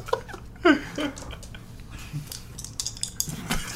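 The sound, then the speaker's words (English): Two dice rattle and clatter in a cup, rolled for damage in a game, a quick run of sharp, irregular clicks with a louder knock early on, while faint voices murmur underneath. “There's two dice in there.”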